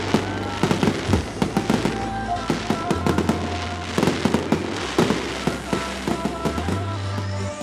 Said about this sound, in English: Just as we parted, the fireworks illuminated the sky.